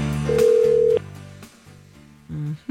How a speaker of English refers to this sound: Let us hear the ringing too, Mike. It adds tension.